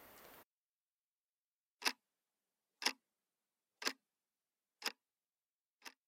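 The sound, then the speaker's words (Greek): An old alarm clock ticks five times, about one second apart. Each tick is a sharp, crisp click after a brief burst of noise at the start. “Τις δουλειές, τα μαθήματα, το σχολείο, τα κανονίζαμε όλα με ένα παλιό ξυπνητήρι, που όταν δούλευε ήταν σαν να λειτουργούσε ολόκληρο μηχανοστάσιο.”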